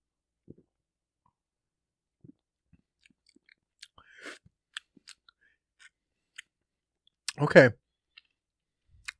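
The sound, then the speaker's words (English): Someone sips a beer: scattered faint clicks and small mouth noises, a soft slurp partway through, then one louder sip with an audible swallow near the end. “So let's go ahead and sip her.”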